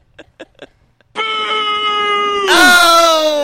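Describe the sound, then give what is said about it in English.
Three quick soft blips, then a crowd booing sound effect played from a sound-effect button: a long, sustained, drawn-out vocal tone that grows louder and wavers, its pitch bending near the end. “Applause, boo, or I'm confused.”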